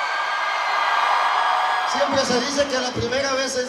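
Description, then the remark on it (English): A large concert crowd of thousands of Latinos roars and cheers loudly and continuously in a torrential rainstorm in Nashville, Tennessee, a dense wall of voices, with a single voice shouting out over the din near the end. “But here he is, standing in front of a roaring crowd of thousands of Latinos braving a torrential rainstorm in the capital of country music, Nashville, Tennessee.”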